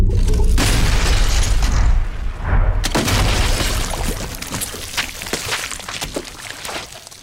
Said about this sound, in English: And so that loud noise that you're hearing in the conclusion of the scene there is the bathtub caving in because it has completely collapsed and lots of human remains and entrails falling suit behind it.